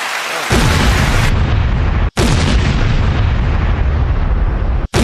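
crowd noise sound effect

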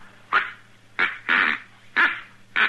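duck call being blown

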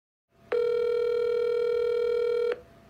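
telephone call ringing

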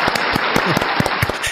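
small round of applause

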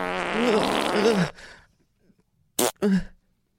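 fart

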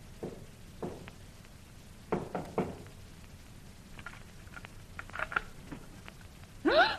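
knocking on a door

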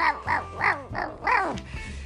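dogs barking and growling

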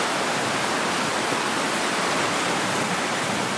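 roar of a river

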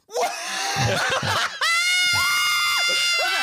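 screaming

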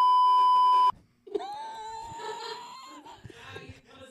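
censor bleep

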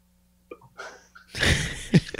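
dog sneezing

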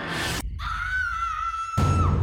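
girl screaming

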